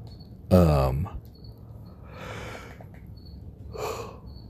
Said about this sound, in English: Sorry for the yawning.